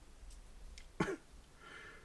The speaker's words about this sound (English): Didn't even respond to that. He's just coughed and carried on.